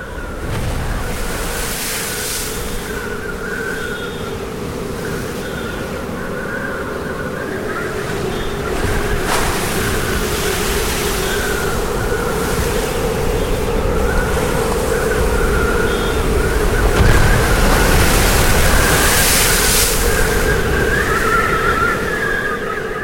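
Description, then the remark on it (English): Loud, continuous roar of Storm Eunice's wind and surging ocean waves crashing over a house, with a steady howling whistle riding on top and swells building and breaking. No one speaks. “that was Storm Eunice, and here at Small Town Talk we got battered. The waves crashed over the house”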